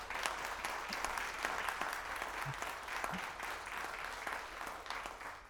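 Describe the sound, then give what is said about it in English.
An audience at a panel discussion claps in a steady round of applause, dense overlapping handclaps holding an even level for several seconds with no voices rising above it. “Shall we give a round of applause?”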